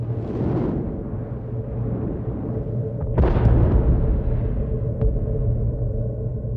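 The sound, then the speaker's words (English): Muffled battle explosions from the beach sequence of Saving Private Ryan, a subjective sound distortion: a deep, steady rumble swells into one loud, heavy blast midway, followed by a brief sharp crack, all sounding dulled and distorted, with no voices. “Steven Spielberg's film was not the first American production to deploy such a subjective sound distortion.”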